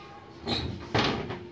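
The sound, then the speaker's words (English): A door slides and shuts in two quick bursts of scraping, rattling noise, the second louder, with no talking. “Well, you got my door wide open letting flies in, too.”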